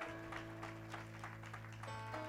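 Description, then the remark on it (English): A church audience claps in welcome for guests and visitors at a Sunday afternoon service, a dense, steady patter of many hands lasting a couple of seconds, fairly soft, over a sustained low tone. “Let's give all of our guests and visitors a wonderful hand clap of welcome.”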